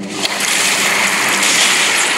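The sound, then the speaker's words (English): A large rubbery fake shark bursting up out of the water in a 1975 film scene, a loud, continuous rushing splash of churning water that lasts a couple of seconds, with no voices. “It pops out. It does look fake, the rubbery shark.”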